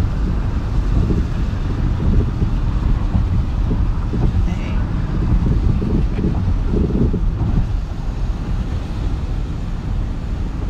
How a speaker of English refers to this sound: Sorry about that, y'all. I'm also in the car right now doing this episode, so.